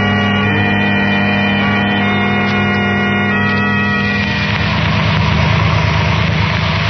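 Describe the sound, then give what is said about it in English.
A car engine idles loudly and steadily with a low, even hum as the car pulls over to the curb, then turns rougher and throatier partway through as it keeps running. No voices are heard. “With Herbert and the girls just pulling over to the curb, Dr.”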